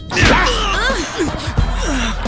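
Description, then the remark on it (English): A sharp slap across the face cracks out amid strained vocal cries and gasps, followed by another quick smack partway through, with agitated voices rising and falling around the hits. “First of all, you don't slap a man.”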